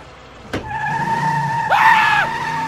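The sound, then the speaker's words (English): A sharp thump, then a car roars past with a steady high tire squeal that swells louder near the end, like a vehicle skidding at speed, with no talking. “Why are you driving so fast?”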